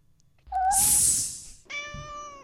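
animal, cat meowing

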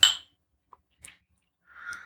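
household object, glasses clinking

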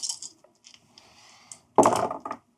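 household object, dice being rolled

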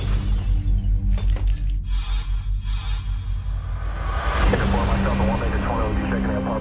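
impact, glass shattering

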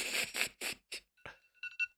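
signal or alarm, timer alarm going off

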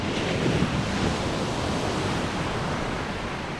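nature, ocean waves crashing

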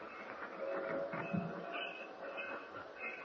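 vehicle, train running on rails

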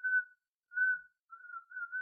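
human body sound, person whistling

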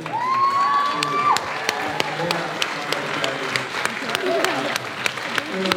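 crowd, applause and clapping

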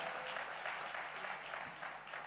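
crowd, audience applause

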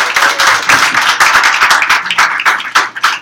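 crowd, audience clapping

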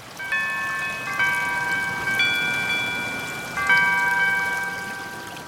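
signal or alarm, phone alarm tone

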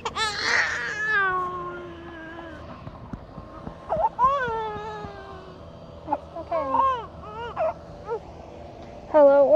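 human body sound, toddler crying

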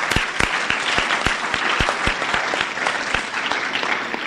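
crowd, audience round of applause

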